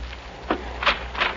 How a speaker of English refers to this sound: I suppose that's the Lord knocking on the door. Why don't you open it and find out? Yeah, I will.